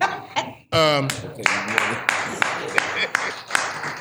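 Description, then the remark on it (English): An audience breaks into steady applause as a speaker is introduced, a dense wash of clapping with a few sharper individual claps standing out. A brief voiced shout or laugh rises just before the clapping fills in. “Now, either y'all can clap or throw money.”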